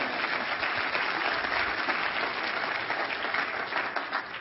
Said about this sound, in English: Go ahead and give him a hand clap.